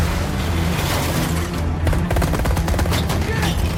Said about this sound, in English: Yeah, they're racing down, this gun's firing, it's ducking down. They're trying to get to the train station in time.